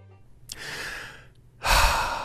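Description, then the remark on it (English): A slow, deep breath drawn in, a brief pause, then a louder, fuller exhale, with no talking. “Breathing.”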